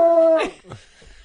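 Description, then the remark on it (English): A small dog lets out a short, high, steady-pitched howl that breaks off into a brief whimpering yelp, then fades into faint trailing whines, loud. “Need a dog? Does anybody want a dog? They're cute. They're little.”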